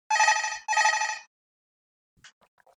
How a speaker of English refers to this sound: Oh, somebody calling you in the hotel already.